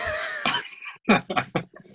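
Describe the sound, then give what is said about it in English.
A person fakes a cough to pronounce a name, forcing out a quick series of four or five harsh, breathy bursts that seem to shape a word, fairly loud. “Maybe that's the only way you can pronounce his name is if you're pretending to cough or sneeze.”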